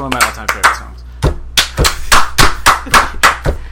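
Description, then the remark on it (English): A brief bit of speech gives way to a run of about nine sharp hand claps in a steady, deliberate rhythm, one person slowly applauding a song. “I will really applaud that song.”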